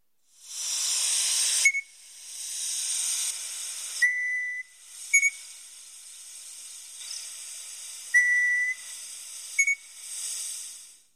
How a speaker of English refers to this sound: Yeah, there you go. That's the night parrot.